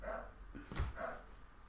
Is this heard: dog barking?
yes